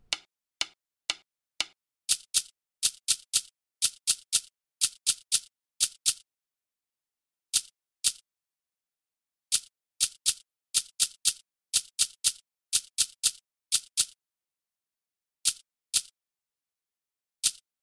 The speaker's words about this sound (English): The shaker A fills in the spaces.